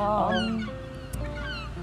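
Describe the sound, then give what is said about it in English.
Birds call continuously in harsh, honking squawks that overlap one another, a steady fairly loud chorus with one brief sharp knock partway through and no talking. “Anything else we want to say or the birds want to say?”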